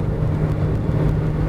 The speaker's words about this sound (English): The rain's starting to fall again, and the traffic is starting to pick up compared to the not a car in sight that we had going through Manning